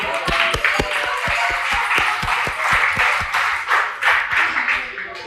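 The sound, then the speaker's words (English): An audience applauds the winner of a trivia question who is called up to collect a prize: a steady, dense wash of many hands clapping for about five seconds, with sharp individual claps standing out and faint voices mixed in. “A clap for the winner.”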